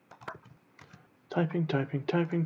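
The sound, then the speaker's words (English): A handful of soft, quick keyboard clicks tap out unevenly, then give way to a louder, sustained voiced vocal sound in the second half. “Typing.”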